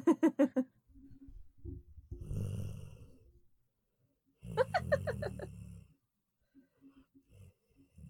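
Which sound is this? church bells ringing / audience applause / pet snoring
pet snoring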